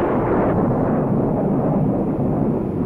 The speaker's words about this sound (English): Thunder rolled across the heavens and changed this pleasant evening into a night to be remembered.